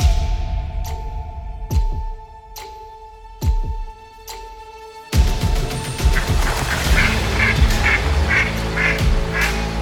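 A duck call is blown in a series of sharp, evenly spaced quacks, loud and close, then a denser, raspier run of rapid quacking carries on steadily to the end.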